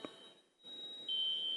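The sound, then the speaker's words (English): A high, thin electronic tone from a fire alarm sounds steadily and then grows louder and sharper near the end. “Jonathan will take care of that. Our resident fire alarm person.”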